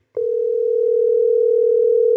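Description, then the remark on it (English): A telephone ringing tone sounds as a call is placed, a single steady electronic hum that holds loud and unbroken for about two seconds after a brief click, with no voices. “Let's give Scav from 2015 a ring here.”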